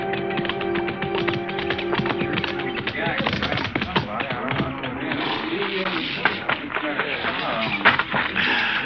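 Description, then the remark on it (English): Horse hooves clip-clop in a steady run of sharp, closely spaced knocks at moderate volume, with a low tonal drone early on and indistinct voices murmuring underneath. “Just drop your saddle anyways, Marshal. I'll turn your horse in with a remuda.”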